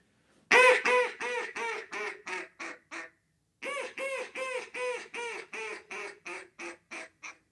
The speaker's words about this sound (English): Aside from that, you're going to have a greeting call. That's just duck saying, hey, I'm over here. They'll do that in the field, water, kind of wherever. This is what that sounds like.